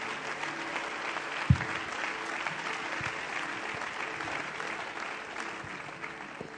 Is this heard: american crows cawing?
no